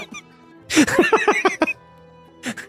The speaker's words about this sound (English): Sometimes when I laugh, I still cough because I still have, you know, the COVID lingering cough.